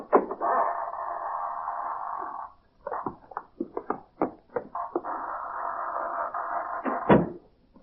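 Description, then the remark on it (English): A private door creaks open with a long, drawn-out groan, followed by a run of sharp latch clicks and knocks, then another sustained creak ending in a solid thud. No voices. “Private door. Shall we enter?”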